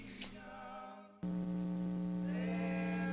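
A steady 60-cycle electrical mains hum, electronic interference on a caller's line, drones with stacked buzzy harmonics, jumping abruptly louder partway through and then holding constant, fairly prominent with no talking over it.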